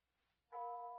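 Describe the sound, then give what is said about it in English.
A bell rings out once after a moment of near silence, striking suddenly and loudly and then sustaining a steady, ringing mid-pitched tone with several clear overtones. “Seems to be coming from the church, don't you think?”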